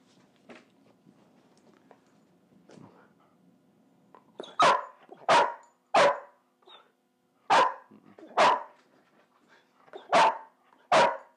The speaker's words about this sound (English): So at the same time, I don't care that she's barking.